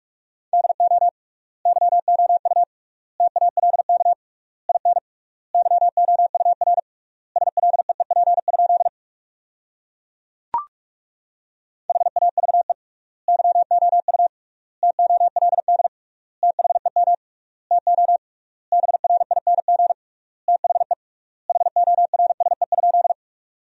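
Fast Morse code practice tones at 45 wpm with triple word spacing, sending sentences made from the top 500 words: a single steady mid-pitched beep keyed in rapid bursts, grouped into words with clear pauses between them and one longer silent gap midway.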